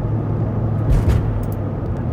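car driving

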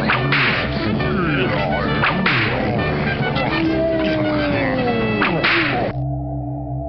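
whip cracking

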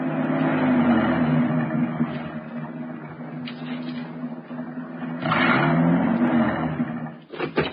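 car engine driving uphill

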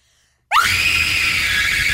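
person screaming loudly

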